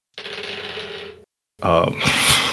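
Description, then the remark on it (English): Two dice rolled on a table for an attack clatter and rattle across the hard surface in a steady burst lasting about a second, then after a brief pause a second, busier clattering tumble follows, fairly loud; the dice show 14 and 20. “She crits. There's a 14 and a 20 on the dice.”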